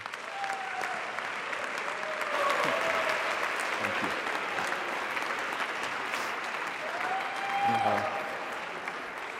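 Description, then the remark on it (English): An audience claps steadily for two speakers for several seconds, a dense, even wash of applause that swells slightly in the middle, with a few whoops and cheers rising above it. “Let's give an applause for our two speakers today.”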